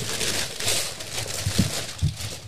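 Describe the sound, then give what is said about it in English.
Gift wrapping paper being torn open, a steady rustling, crinkling rip lasting a couple of seconds with a few soft thumps of handling near the end. “You can rip it open. It's okay.”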